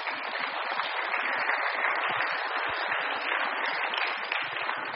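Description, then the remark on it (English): A crowd breaks into a sustained round of applause for teenagers' hard work on a mission, many hands clapping in a dense, steady wash of sound that holds at an even loudness for the whole stretch, with no voices. “And you should really give them a round of applause for all their hard work.”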